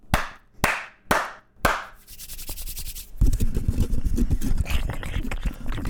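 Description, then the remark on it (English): Four sharp hand claps land in a steady, even rhythm, each one loud and crisp, followed by a stretch of rough, rustling noise with a low rumbling undertone. “Those claps, I couldn't tell if she was just getting warmed she was up.”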